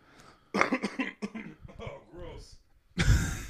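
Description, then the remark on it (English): A harsh cough rings out close to the mic, with a burst of throat clearing mixed into quick speech around it, and a loud final cough ending the stretch. “I pulled the mic away maybe too late, but sorry. We don't have the cough button here.”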